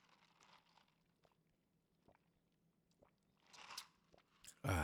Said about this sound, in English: Sorry, I had to sip my cranberry juice.